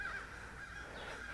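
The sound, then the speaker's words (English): A crow caws faintly, its harsh, raspy calls carrying over a low outdoor background with no one speaking. “Oh, there's a bird.”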